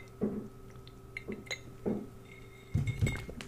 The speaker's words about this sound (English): Let's take a sip of iced coffee.